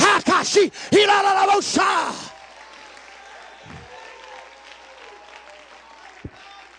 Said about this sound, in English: Come on, somebody shout yeah, somebody clap your hands, somebody shout for joy.